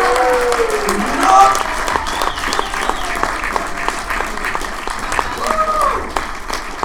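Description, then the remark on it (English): A comedy show audience claps steadily for headliner Jim Shore, a dense wash of hand claps with a few whoops and shouted cheers rising over it. The applause stays loud and sustained throughout. “So for your headliner, a round of applause, put your hands together for Mr. Jim Shore!”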